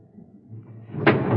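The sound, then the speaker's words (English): Low mechanical rumble builds as a train stops at a platform, then a train car door slides and bangs shut with a sharp, loud burst near the end, followed by a steady hiss. “Train stopped, he went in through the center door. I went in by the door at the rear of the car.”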